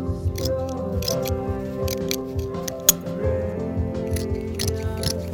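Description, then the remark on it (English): Sharp scissor snips cut through a bolt of fabric at an irregular pace, several crisp clicks over a steady bed of music playing in the background, in the South Bronx. “I'm in my zone and I just cut and cut and cut.”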